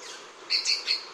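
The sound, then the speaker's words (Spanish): Three quick, high-pitched chirps from a Santa Marta hummingbird, fairly clear, spaced about a beat apart over a faint background hiss. No one speaks. “Los biólogos ahora intentan entender el tamaño y ubicación de las colonias restantes del colibrí de Santa Marta.”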